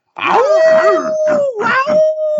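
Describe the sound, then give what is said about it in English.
A human voice imitates a wolf howl for the NC State Wolfpack, rising into one long, steady, sustained note, with choppy, breathy vocal bursts layered over it. “It doesn't seem like a pack, more like a lone wolf, but okay.”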